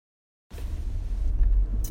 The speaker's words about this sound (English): I'm in my car while I'm doing this, so I do apologize if you hear some engine revving or me honking the horn in the middle of this, because I am on my way to the academy.